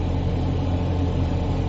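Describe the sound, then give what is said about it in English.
A steady, low car engine rumble drones on continuously as a person drives their car, with a constant hum and no talking. “So yeah, as I said, I was out here enjoying the last 3 days that I have to drive my car legally before my insurance expires Sunday at midnight.”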